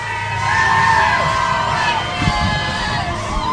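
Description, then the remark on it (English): A crowd at a parade cheers and shouts without pause, with high whoops and yells rising above a dense, steady roar that stays loud throughout. “Yeshiva University, you guys are going to have to make some noise when you get over here.”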